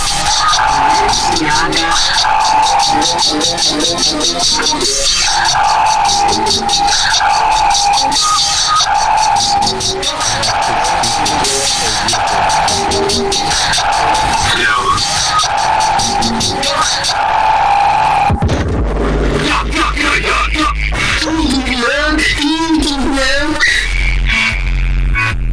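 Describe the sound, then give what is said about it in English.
A loud homemade electronic beat made by Momo plays: dense, rhythmic clicking over a steady droning tone, then it shifts partway through into heavy bass with warbling, wavering synth lines. “let's take a listen to this one. This is Momo's beat.”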